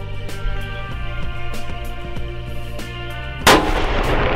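A single loud rifle shot at a buck in a field, fired by a self-filming hunter, cracks out near the end, its sharp burst trailing off into a brief rumbling decay over a steady, tonal musical background. No one speaks.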